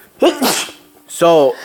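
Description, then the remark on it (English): A loud sneeze bursts out with a sharp breathy onset, followed moments later by a brief voiced sound like a murmur or exclamation. “bless you.”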